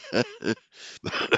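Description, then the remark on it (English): A rough bout of coughing and throat clearing brought on by laughing: several short harsh bursts with a breathy, raspy intake in the middle, no words spoken. “I shouldn't laugh. Makes me cough.”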